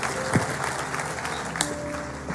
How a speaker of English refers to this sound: Would you applaud the Lord, everybody, and remain standing? Hallelujah.